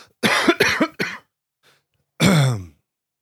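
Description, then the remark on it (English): A quick burst of three or four dry coughs, a short pause, then one longer, rougher cough to finish. Fairly loud, with no talking. “I have a little cough.”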